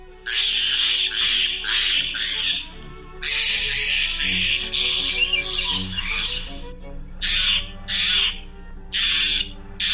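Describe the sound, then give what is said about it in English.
Harsh, raspy calls of a Steller's jay, repeated in loud bursts with brief pauses between them, with no one talking. “The blue jay's vocalizations are sometimes described as harsh and strident, but they're downright musical compared to these calls of the Steller's jay.”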